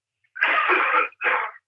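A man coughs twice in quick succession: a long, rough, hacking cough followed by a shorter one, fairly close and clear, with no talking.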